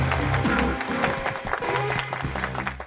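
A crowd claps steadily in a round of applause, a dense, unbroken patter of many hands lasting the whole few seconds, with a faint low hum underneath.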